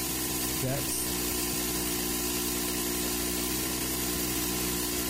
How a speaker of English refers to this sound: You just heard $1,000 worth of ammo.